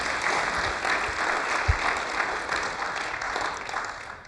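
A crowd applauds steadily to welcome a guest, a dense patter of many hands clapping at an even loudness for a few seconds without pause, with no voices rising above it.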